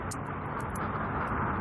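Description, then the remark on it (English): A school bus rumbles past with a steady, broad engine and road roar, fairly loud, with no voices. “the school bus is coming for us.”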